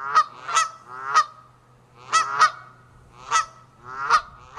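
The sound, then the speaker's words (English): Geese honk repeatedly in loud, nasal calls, several overlapping in an irregular rhythm of paired and single honks, with a faint low hum in the background. “Migratory geese might be more naive about the airport and about the local flow of airplane traffic.”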